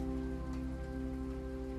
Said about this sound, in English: Damn, I wonder if y'all can hear that rain. Let me try to pause and see if I can show y'all. Y'all can hear it.